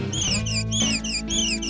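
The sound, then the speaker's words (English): A manatee makes a rapid run of high, dolphin-like squeaks and chirps, four or five bright warbling bursts in quick succession, fairly loud over a low steady hum. “We even communicate like dolphins. Show him, Milo.”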